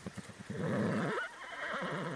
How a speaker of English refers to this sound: And that sounds like a horse getting ready for a little nap in his stall.